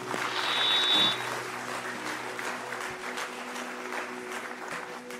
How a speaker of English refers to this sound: Pastor Mondo, a round of applause.